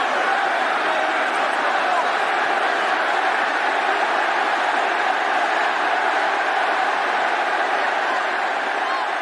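A large arena crowd at a wrestling mixed tag match roars and cheers as Kurt Angle puts Stephanie McMahon in an ankle lock, a steady, loud wall of noise that holds at the same intensity for the whole stretch, with no single voice standing out.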